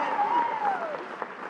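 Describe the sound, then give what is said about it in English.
An audience claps steadily for the whole moment, a dense, even patter of many hands, with a faint voice-like tone gliding along above the applause. “You can clap for that as well.”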